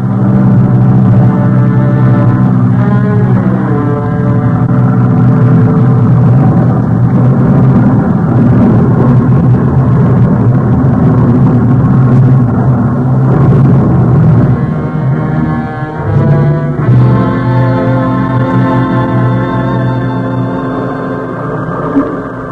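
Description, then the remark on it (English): A loud, continuous roar of aircraft engines droning overhead, with layered tones that rise and fall in pitch as planes pass, sustained for the whole stretch without any voices. “After the planes had gone, the pounding surf threw our raft onto the beach.”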